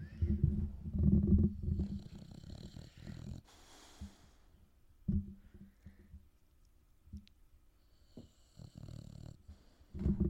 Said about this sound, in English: I love this man snoring. Hold on. Let's see if I can get him. Hold on.